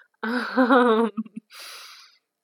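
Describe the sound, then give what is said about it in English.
A pet named Iggy snores: a drawn-out, wavering voiced snore, a few quick snuffling snorts, then a raspy, breathy exhale. No one speaks. “And you're probably hearing Iggy snore in the background.”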